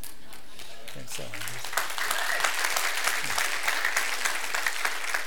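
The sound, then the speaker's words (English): A crowd bursts into sustained applause, many hands clapping in a dense, steady wash, with a few voices briefly audible underneath near the start. “If you didn't clap, we did it on camera.”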